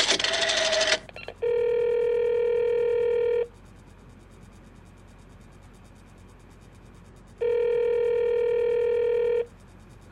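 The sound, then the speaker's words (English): A short burst of clattery noise from a telephone being dialed to call the operator, then two long, steady electronic ringing tones on the line, each about two seconds and separated by a few seconds of quiet. “I'll call the operator again.”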